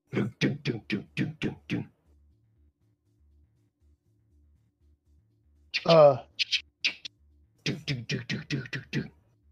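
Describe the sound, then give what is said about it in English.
A voice imitates rapid banging on a door: a quick burst of about eight thumps, a short vocal sound, then another fast run of pounding hits, fairly loud. “They are banging on your door.”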